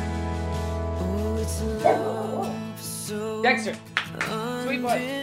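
A dog barks and yips in several short bursts over a steady tonal musical backdrop, the barks fairly loud, with a low droning note fading out early on.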